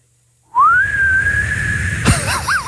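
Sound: attempted whistle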